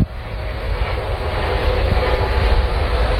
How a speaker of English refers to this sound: There's this big ass helicopters that keep going past.